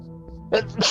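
sneeze

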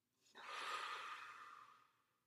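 slow controlled exhale

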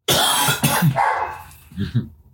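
dogs barking

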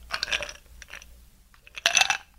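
ice clinking

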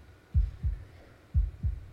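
heartbeat

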